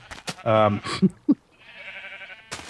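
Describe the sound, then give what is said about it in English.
A single short bleat from a multicolored sheep in a video game, wavering and fairly loud, followed by a few brief clicks and a soft hissy background. “More multicolored sheep over here.”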